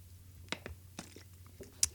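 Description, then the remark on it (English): Someone takes a sip of water: a few soft, wet mouth clicks and a gulp, spaced irregularly over a low steady hum, with no talking. “I like that you need to take a sip of water first.”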